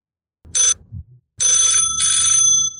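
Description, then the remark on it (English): A phone rings on an outgoing call placed to James Hetfield, a short bright trill followed by a longer warbling ring after a brief pause, loud, with no one talking. “over the rings”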